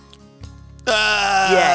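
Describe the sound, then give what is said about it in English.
After a brief quiet moment, a person lets out a loud, sustained acted scream of pain, a strained, wavering wail with a rich harmonic tone that holds steady to the end. “and all of a sudden, out of nowhere, your TNT that you use to blow some of the rocks out of the side of the mountain explodes a little too early, and it falls on your leg, and you're screaming. Scream for me.”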